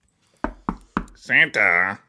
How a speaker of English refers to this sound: you are two people at his workshop, very concerned, knocking on the door.